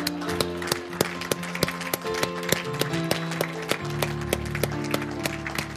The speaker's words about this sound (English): Let's give Him a hand clap and shout of praise in this house.